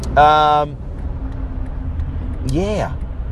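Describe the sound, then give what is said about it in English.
Steady low rumble of road traffic going by, with police vehicles zipping through the traffic, broken by a loud, steady tonal blast near the start and a brief swooping tonal call toward the end. “So where are we up to now with all of the traffic flying around me?”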